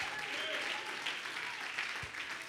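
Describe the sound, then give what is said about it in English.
An audience claps hands to magnify the name of Jesus, a dense, continuous wash of applause that stays loud and steady throughout, with faint voices mixed into the crowd noise. “Somebody clap your hands and magnify the name of Jesus.”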